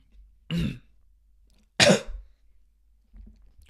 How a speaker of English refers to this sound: My God. This cough is persistent. You guys have been tracking this cough, right? I've been coughing a lot. Well, not a lot, but I used to cough more. But it's been persistent. Still with me. Still coughing here and there.